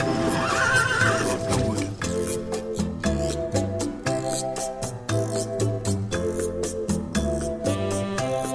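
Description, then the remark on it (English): A horse whinnies loudly at the start. Steady, rhythmic clopping beats follow over a sustained, tonal musical backdrop. No one speaks. “I think that's his dependable horse.”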